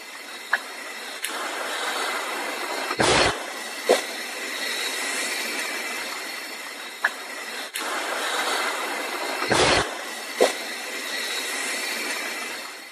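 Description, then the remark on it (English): Heavy slaps strike a new cabin over a steady rushing, rumbling background: two loud, broad thuds stand out, with several sharper, quicker knocks scattered between them. No one speaks. “Yeah, and that sounds like it's really, really hitting the cabin.”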